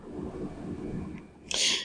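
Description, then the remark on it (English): After a stretch of low, muffled rumbling, a single sharp, breathy cough bursts loudly into the microphone near the end, harsh and hissy, with no talking. “He did note that someone forgot to turn away from the mic to cough. Which I think you just did that again.”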